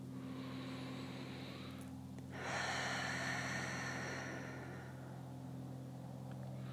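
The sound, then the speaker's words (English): A slow, deep breath in through the nose and out through the mouth: a soft nasal inhale followed by a longer, airy exhale that swells and fades, over a steady low background hum. No one speaks. “Take in 3 deep breaths in through your nose and out through your mouth.”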